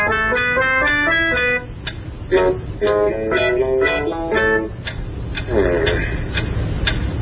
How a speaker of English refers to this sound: What is that mysterious ticking noise?